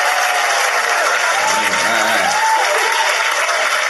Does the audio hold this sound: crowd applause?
yes